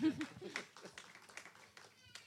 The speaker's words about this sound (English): Let's clap.